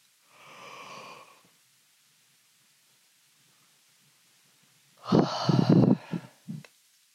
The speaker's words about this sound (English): So you may hear me yawn or take deep sighs and breaths and things like that. That is how I am working at frequency level and energy level right now.